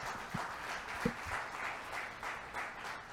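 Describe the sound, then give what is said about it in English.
An audience claps steadily together for the Lord Almighty, a dense, sustained patter of many hands with a few louder, sharper claps standing out. No one speaks over it. “Let's clap for the Lord Almighty again.”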